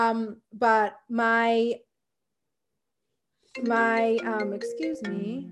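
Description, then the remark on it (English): A voice imitates a phone or computer notification chime: three short sung tones, a pause of nearly two seconds, then a longer run of melodic ding-like notes, fairly loud. “I don't know if anyone else experiences this, but it doesn't matter if I put my phone or computer on Do Not Disturb, it still disturbs.”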